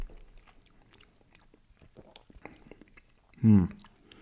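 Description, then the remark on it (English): Quiet wet mouth noises of someone tasting a sip of liquid, chewing it to get air into the mouth, soft smacks and clicks, ending in a short, louder throaty slurp or gulp. “I sort of almost like chew it a little bit. You know, it's nice to get some air in your mouth.”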